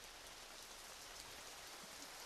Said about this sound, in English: Hear that rain